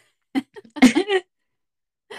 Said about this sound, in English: But gonna make me cough. I do.